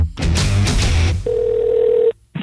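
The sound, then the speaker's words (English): A brief burst of dense, noisy sound gives way to a single steady telephone tone, thin and filtered as if over a phone line, lasting under a second before cutting off. “let's jump on the phone with Brian Karem”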